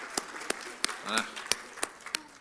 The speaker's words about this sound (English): Glad God's blessed each one of us to be here. And yeah, I will clap for that. Amen.